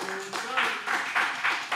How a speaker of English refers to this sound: Speaking of Embiid, Embiid won MVP. Clap it up for that.